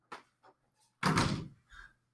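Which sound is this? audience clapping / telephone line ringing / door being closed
door being closed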